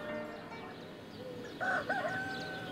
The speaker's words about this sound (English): And then the rooster crowed